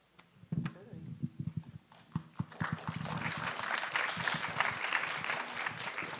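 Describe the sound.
Audience applause during a question-and-answer session starts with a few scattered claps, then swells into steady, dense clapping from a sizable crowd, sustained and fairly loud through the end, with some murmuring voices underneath.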